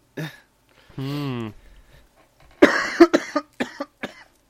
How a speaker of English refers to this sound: I'm sorry, we'll get through this. Well, yes. So, I'm not sure I can really cut out all the coughs because there won't be very much left.